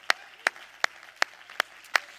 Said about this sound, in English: Somebody clap your hands here this morning.